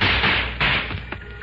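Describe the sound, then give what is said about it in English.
Firecrackers, thrown by a kid under a man's feet, going off: a burst of loud, sharp pops crackling over a hissing wash of noise, with a couple more cracks after a short gap. “One of the kids threw firecrackers under his feet.”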